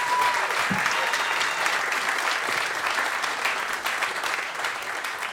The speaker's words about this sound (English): Big round of applause for our superhuman guest, Dexter Fletcher.